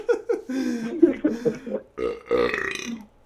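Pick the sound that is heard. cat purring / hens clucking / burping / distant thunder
burping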